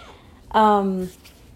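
A single loud meow from a male pet cat, lasting about half a second with a slightly falling pitch, then quiet room tone. No one speaks.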